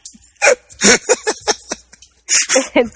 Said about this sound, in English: It sounds like a dog. She's given it the Latin name of Rex, because, you know, close enough, right?